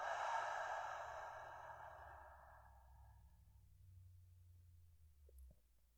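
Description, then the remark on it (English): A long, slow exhale during a breathing exercise sighs out after a full breath in, loud and airy at first, then gradually fading over several seconds into near silence, with a faint click near the end. “Take another one, full breath in. And let that breath go.”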